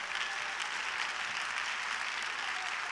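An audience claps their hands steadily in praise of God, a dense, continuous wash of many overlapping claps at an even loudness, with no voices standing out.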